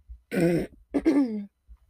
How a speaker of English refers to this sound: I'm gonna keep clearing my throat extremely loud in everyone's ears, and I'm sorry about that, because my voice is just gone.